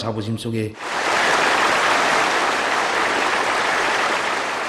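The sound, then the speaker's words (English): A short burst of voice gives way to pre-recorded applause during Kim's New Year's Day 2018 speech in North Korea, a steady, dense wash that holds loud and even for several seconds, like a large crowd clapping continuously without pause. “On New Year's Day 2018, he made a very strange speech with pre-recorded applause, announcing that he was considering sending athletes to the 2018 Winter Olympics in South Korea.”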